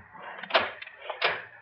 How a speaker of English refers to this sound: I'll just lock the door while the safe is open. Oh, that's a wise precaution.